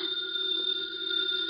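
A house telephone bell rings continuously in a steady, bright electric trill, fairly loud, with no pauses or voices over it.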